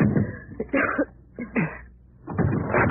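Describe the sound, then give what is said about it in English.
A door being smashed open to escape a burning building: a series of loud, irregular crashing blows with splintering, rattling noise between them, building to a final heavy burst, no voices. “Maybe we can smash our way out.”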